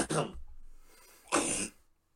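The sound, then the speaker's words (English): Two harsh coughing bursts about a second apart, raspy and throaty, from a man choking on something and clearing his throat, with a quieter breathy pause between them. “Apparently he's choking on something.”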